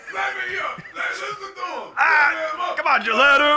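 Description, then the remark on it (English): A crowd at a live stage show going wild, with many voices yelling and cheering together in a loud, continuous roar that surges even louder partway through and stays intense to the end. “The crowd's going nuts.”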